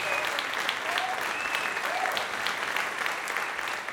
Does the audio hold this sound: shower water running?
no